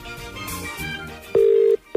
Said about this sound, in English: Answer your phone.